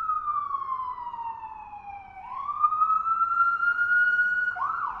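An ambulance siren wails loudly as a full-size ambulance comes along the street, its tone sliding down and then climbing back up in a slow sweep over a low street rumble, with no one talking.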